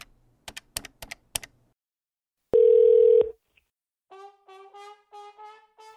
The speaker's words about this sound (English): All right, let's just dial up a few numbers here.